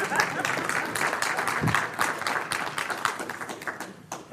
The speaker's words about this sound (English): Is that a smatter of applause that we can magnify?